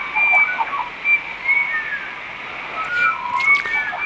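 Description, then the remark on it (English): High-pitched, lilting bird calls, likely a pied currawong, sound over a bed of warbling magpies, with several whistled phrases overlapping throughout at moderate distance and no talking. “he says that this bird can be heard coming in behind the magpies.”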